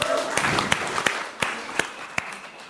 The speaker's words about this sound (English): Well, I think that deserves a round of applause, don't you?